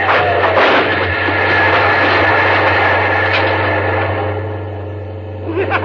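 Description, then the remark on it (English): A loud, steady engine roar as a car races through a crossing with its gates down, past a train, with a deep droning rumble and a faint whine that dips near the end and then swells again. “We'll hit the train without any trouble at all. But the gates are down. And we'll go right through.”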